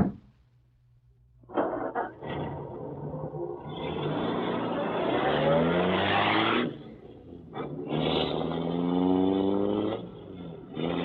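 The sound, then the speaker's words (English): A car engine rumbles to life and builds into a loud, sustained roar as the vehicle pulls away, briefly easing off before surging again. No one speaks. “Boy, what a job this car is.”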